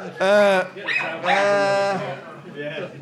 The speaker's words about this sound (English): I can't actually concentrate. I've just got a dog barking at my head.